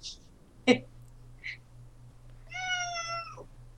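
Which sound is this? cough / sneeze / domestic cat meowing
domestic cat meowing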